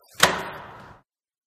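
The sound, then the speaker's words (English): A door slams shut and locks when a security button on a keyring is pressed, a single loud, sharp impact followed by a short ringing decay that fades out within about a second. No voices are present. “Unlock this door immediately.”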